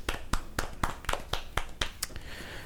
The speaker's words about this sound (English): Let's clap it up for the Filipinos.